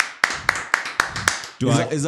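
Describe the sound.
Five crisp hand claps welcoming a guest, in a quick, even rhythm, each a sharp slap, followed by a person starting to talk right after the clapping stops.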